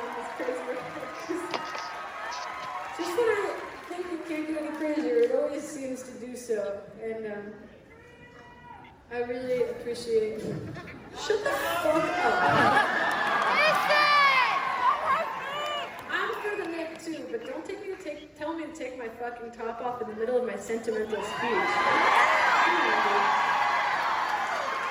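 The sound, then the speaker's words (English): A live concert crowd murmurs and cheers, with a man in the audience screaming "Free the nips" at the female performer, calling for her to take her top off, amid whoops and chatter, the noise swelling in bursts before settling. “Some idiot in the crowd called out for her to take her top off by screaming, "Free the nips."”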